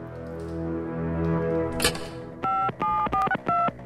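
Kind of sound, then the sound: signal or alarm, telephone keypad dialing tones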